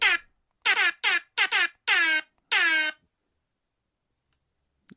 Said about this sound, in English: That's time. Worth it. I was so excited that whole time. I was literally dancing in my chair over here, waiting to air horn. I've missed it so much.